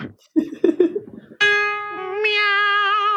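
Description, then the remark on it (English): A cat meows, starting with a few short, choppy chirps, then a long, loud, drawn-out meow with a steady tone that lifts slightly near the end, with no talking. “Meow.”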